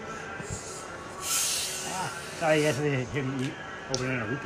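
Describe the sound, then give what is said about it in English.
A burst of bright, airy fizzing hiss from overcarbonated Barq's root beer rises for under a second, then voices start talking over the lingering soft noise. “Yeah, barks that is overcarbonated apparently.”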